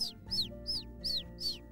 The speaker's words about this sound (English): Juliana opened the window and the bird flew right inside.